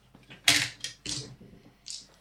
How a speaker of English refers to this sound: I did roll about 20 dice there without getting a single six.